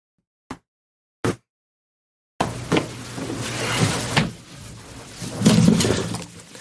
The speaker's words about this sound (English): Well, you know, hold on, guys. I got to close the door because of the dogs. I'll be right back.